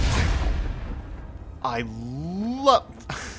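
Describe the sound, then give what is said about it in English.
An explosion from the magic sword Dawnbreaker in a video game, used against a draugr in a cave, bursts out in a broad, rumbling blast that fades over about a second and a half, followed by a drawn-out, wavering vocal groan. “Just a little tinge of happiness goes through me every time I get that little explosion.”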